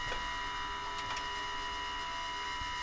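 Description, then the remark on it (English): A few sharp mechanical clicks from the aircraft's left-hand engine priming valve switching on as the priming selector switch is pressed down, set against a steady high-pitched electrical hum and whine. No one speaks. “You should be able to hear it click on the left-hand side.”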